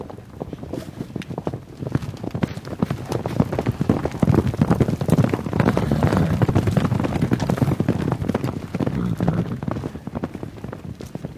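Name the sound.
horses stampeding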